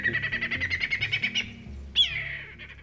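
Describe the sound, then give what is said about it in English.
Australian birds calling: a quick, rhythmic run of bright chirps for over a second, then a short pause and a louder, harsher descending squawk trailing into softer chirping, clear with no talking. “Australia is home to a lot of really interesting birds. We have screamers and cluckers and, you know, they make all sorts of crazy little sounds.”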